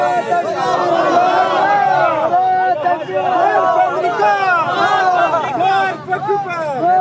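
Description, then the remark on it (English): A large crowd in front of the U.S. Embassy in Kabul chants slogans together, including 'Allahu Akbar' ('God is greatest') and 'death to America'. Many voices rise and fall in loud, overlapping rhythmic shouts that continue without a break. “The crowd starts chanting Allahu Akbar, which means God is greatest.”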